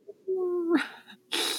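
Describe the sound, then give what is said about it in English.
A person imitates a cat with a drawn-out, tonal meow that rises into a breathy finish, followed by a short burst of noisy, hissy sound; fairly loud. “Meow.”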